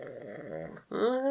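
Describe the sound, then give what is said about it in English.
A single loud snore from a person napping: a drawn-out rumbling inhale, a brief pause, then a rising, throaty exhale, with no talking. “Don't look over there at your snoring employee / family member.”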